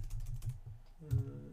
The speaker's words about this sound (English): Sorry, I'm having some trouble typing.